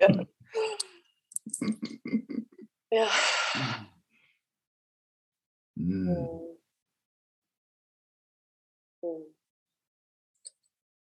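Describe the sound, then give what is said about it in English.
Soft vocal sounds give way to a long, deep, airy inhale, followed by a slow voiced sigh-like exhale and a brief quiet breath, with long silences between. “I invite for a breath. I'm breathing.”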